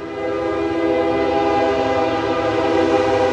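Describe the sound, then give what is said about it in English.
A train horn blares in a long, steady, loud blast, its stacked harmonic tones sustained throughout over a low rumble, as a train passes through the town of Iuka, Mississippi. “Other than the train passing through, the town is pretty quiet.”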